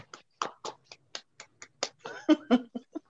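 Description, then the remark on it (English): A few people clap their hands as a sound effect, in loose, uneven bursts, about a dozen sharp claps, with some laughter or voices mixing in toward the end. “We need the clapping sound. Right. Everybody clap your hands.”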